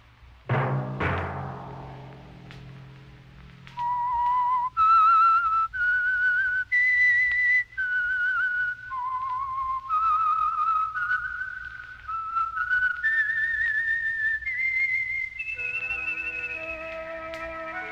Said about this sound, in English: That whistle be your signal for the Signal Oil program, The Whistler, each Sunday night at this same time.